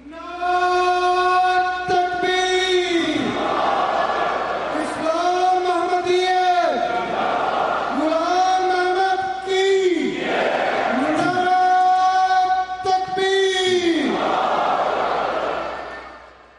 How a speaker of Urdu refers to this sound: آواز میں گونج پڑی ہے, آخر تک آواز صحیح آ رہی ہے انتظامیہ؟ آخر تک لوگوں کو آواز صحیح آ رہی ہے؟